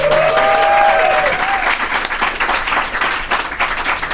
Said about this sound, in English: It's no longer paywalled. Let's hear a round of applause for that.